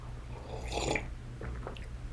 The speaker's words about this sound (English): Oh man, that is fucking delicious. Delicious, delicious coffee. Probably one of the best sips of my life right there.